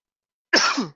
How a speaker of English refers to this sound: I had to cough there for a minute. I apologize, ladies and gentlemen.